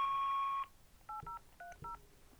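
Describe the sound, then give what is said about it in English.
A long electronic beep sounds, then four short dual-tone telephone keypad presses follow in quick succession as a 4-digit code is keyed in, clear, with no one speaking. “After the beep, please key in or say the 4-digit code displayed on your mobile screen.”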